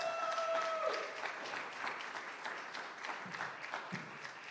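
An audience claps steadily in a dense, continuous round of applause lasting several seconds, for a guest invited up onto the stage one morning, with a brief high tonal note at the start and no talking over it.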